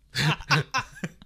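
A fairly quiet run of four or five short coughs and throat-clearing rasps from someone with bronchitis, the first two fuller and the last ones smaller, with no talking.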